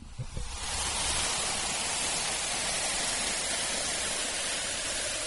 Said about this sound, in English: Can you hear that fizzing? That's the bubbles. And what's happening is the vinegar is reacting with the bicarbonate soda.